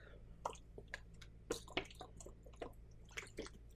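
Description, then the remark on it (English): Someone drinks water from a glass, with a quiet series of wet sips, gulps and small clicks of swallowing spread over a few seconds, no talking. “I'm gonna drink my water.”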